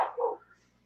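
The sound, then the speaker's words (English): A woman sneezes once, a sharp burst followed by a short, breathy tail that fades quickly. The sneeze is fairly quiet, with no talking around it. “Your wife sneezing.”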